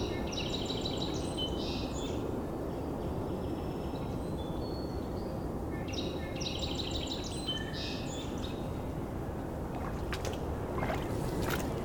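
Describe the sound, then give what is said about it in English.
A red-bellied woodpecker gives two bursts of rolling, churring calls a few seconds apart, fairly clear over a steady wash of water and outdoor rumble. “Red-bellied woodpecker.”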